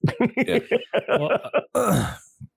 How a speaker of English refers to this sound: I thought you were saying something in your cough.